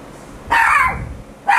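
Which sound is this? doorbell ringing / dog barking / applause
dog barking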